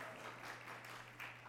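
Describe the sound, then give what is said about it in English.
An audience cheers and applauds during a speech about a capital campaign for a new kitchen and a zero carbon space, in a steady, dense wash of noise that holds at an even, fairly soft level for over a second, with a low electrical hum underneath and no talking. “Adding no, go ahead and cheer, no carbon.”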